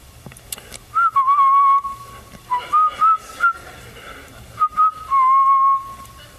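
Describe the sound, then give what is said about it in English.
Someone's cell phone rings during a Bible teaching, with a melodic, whistle-like tone, playing the same short phrase of sliding notes three times with brief pauses between, fairly loud and with no talking over it. “Someone's cell phone going off right now.”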